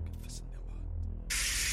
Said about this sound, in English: She ran upstairs to find the shower running at full pressure.